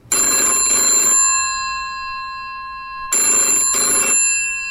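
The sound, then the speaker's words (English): An old-style telephone bell rings in two double bursts, a pause of about two seconds between them, loud with a bright metallic jangle and no voices. “Phone's ringing, dude.”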